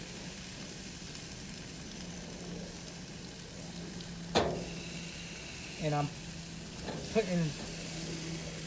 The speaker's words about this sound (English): As I put these meats down on the grill.